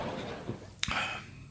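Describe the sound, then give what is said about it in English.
A single bright clink of glass during a drink, with a short shimmering ring-out, fairly soft, followed a moment later by a duller knock against a quiet background. “Quick drink here. Cheers.”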